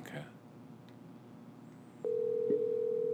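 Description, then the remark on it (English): A phone dial tone switches on abruptly partway through as a dropped call is redialed, and holds as one steady, unbroken hum until the end, loud over a low murmur of room noise. “I heard the beep, beep, beep of the call dropped. It did. It did. System failure. We'll get him back.”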